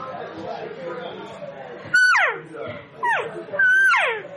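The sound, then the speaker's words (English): Three cow elk calls blown on a diaphragm caller from a different maker, each a loud, high, nasal mew that slides steeply downward, following a stretch of low murmuring background noise. “You hear that? Just a little bit different pitch.”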